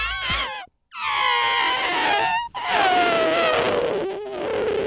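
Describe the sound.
A voice imitates a deflating balloon flying around a room: a loud, wavering, buzzy whine that slides and warbles in pitch, broken by two brief pauses, with no other talk.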